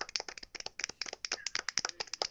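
human body sound, soft golf clap

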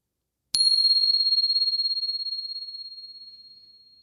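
signal or alarm, meditation bell ringing

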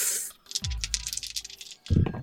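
dice being rolled

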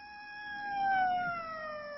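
vehicle, emergency vehicle siren

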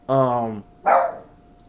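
animal, dog barking

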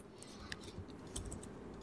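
household object, typing on computer keyboards

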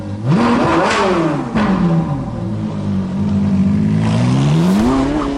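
vehicle, car engine revving

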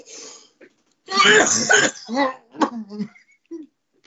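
human body sound, repeated coughing

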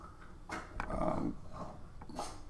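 animal, dogs growling and barking

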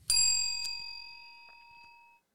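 signal or alarm, a bell being rung

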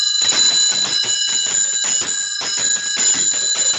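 sleigh bells being shaken

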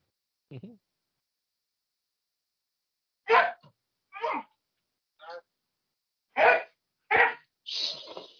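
animal, dogs barking

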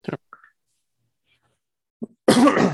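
human body sound, cough

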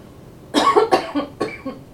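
human body sound, cough

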